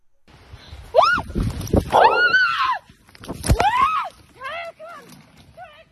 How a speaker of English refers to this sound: the moose started charging me and I looked and I went to run for the trees, it was actually, because I caught on video, it was 3 seconds. You're about to hear a piece of that video right when the moose was going to attack